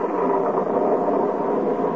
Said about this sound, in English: Gosh, listen to that rain. Here we drive 400 miles up here to hunt ducks, and all we've hunted so far is pots and pans to put under the leaks in the dad-ratted roof. Listen, there's another leak.